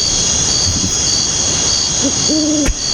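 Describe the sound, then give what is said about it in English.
An owl hoots a few times against a steady high insect-like drone, the calls soft at first and then a clearer, longer hoot near the end, followed by a sharp click. “is it true that you want to change the Republican Party mascot from an elephant to an owl after this morning?”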